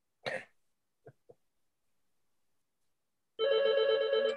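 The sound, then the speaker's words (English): A short cough and a couple of soft throat-clearing sounds, then a pause before a loud, steady telephone ring starts up and runs until the end. “The answer's on that phone call.”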